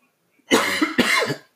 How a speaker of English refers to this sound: I'm sorry for coughing too. I smoke a lot of weed.